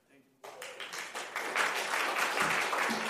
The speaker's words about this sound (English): You don't have to clap for me. You can clap for her, though.